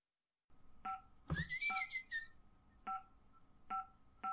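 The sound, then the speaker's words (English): Short, identical two-tone beeps from a home alarm keypad sound about five times at uneven intervals, with a brief thump and a rising, whistle-like electronic tone near the start. Nobody speaks. “What the fuck was that? The alarm system said.”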